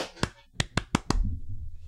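Five sharp hand claps: a single clap, a short pause, then four quicker, evenly spaced claps, followed by a low, muffled rumble as the clapping stops.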